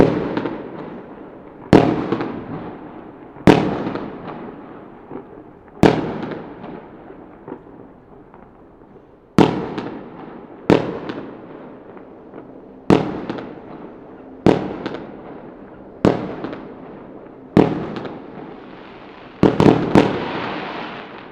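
New Year's Eve fireworks bursting close by, about a dozen sharp booms at irregular intervals, each followed by a crackling, echoing decay, with a quick double burst near the end and no voices.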